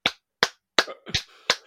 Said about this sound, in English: Just clap your hand if you really want to make that sound. Just clap it.